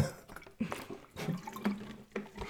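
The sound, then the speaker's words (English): Someone drinks from a water bottle, with a series of four or five wet gulps and sloshes at an uneven pace. No one speaks. “Excuse me, I just hit my water bottle.”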